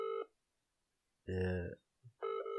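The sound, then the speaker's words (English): Electronic phone tones sound in short bursts at the start and end, a phone call to a business ringing out with no answer, with a brief voice and a small thump in the gap between. “I can't believe they're not answering.”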